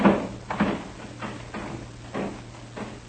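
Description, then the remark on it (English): A back door being opened, heard as a series of soft knocking and rattling bumps spread over a few seconds, moderately quiet, with a steady low hum underneath and no talking. “Open that back door.”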